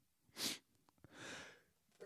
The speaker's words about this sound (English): Salute. Again. Holy cow! I'm sneezing.